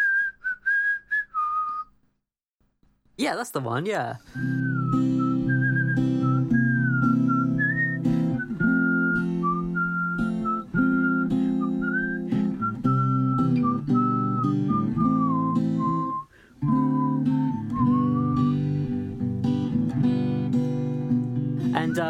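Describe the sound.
A person whistles a wandering, improvised melody for about twenty seconds, clear, over a steady low instrumental backing, with a brief spoken remark near the start.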